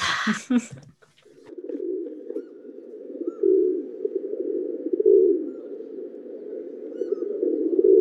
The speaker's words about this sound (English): The rock pigeon. The deep fake. The real bird. Columbia Livia. Also called a rock dove, or just a pigeon.